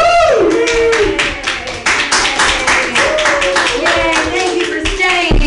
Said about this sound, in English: Okay, I'm going to run around. Clap for me. Yay. Woo!